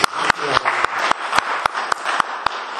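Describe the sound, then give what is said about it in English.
A church audience applauds to honour a person, a dense, steady wash of clapping, with sharp, evenly spaced claps cutting through at a brisk rhythm, about three or four per second, throughout. “And what we do then in our church is we clap the person.”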